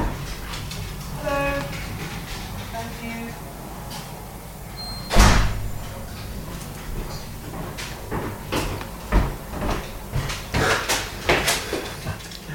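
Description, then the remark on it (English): Knocking on a door: one sharp, louder rap, then a scattered series of softer, uneven knocks, with faint background murmur and a low hum underneath. “That's not a good knock.”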